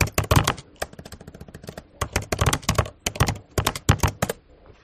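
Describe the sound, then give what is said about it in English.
Rapid clicking of keys on a computer keyboard as someone Googles whether Morton Downey Jr. is alive, in uneven bursts of sharp taps with brief pauses between, ending in a quieter stretch. No one speaks. “This raises the question, is Morton Downey Jr. alive or not, which I'm going to Google right now.”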